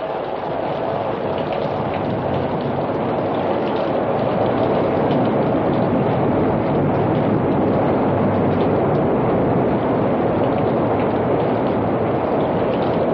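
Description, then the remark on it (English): A steady, powerful roar of rushing floodwater surges on without a break, loud, its dense churning noise holding constant throughout with no voices. “Here comes the water.”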